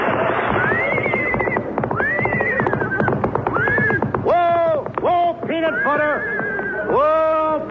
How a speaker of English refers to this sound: Oh, what do you think it is? It's a horse, isn't it? Certainly it's a horse.